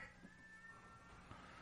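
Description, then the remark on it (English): Cats yowl and caterwaul in long, drawn-out wavering cries that overlap one another, sounding faint, with no one talking. “Oh, cats are going crazy again.”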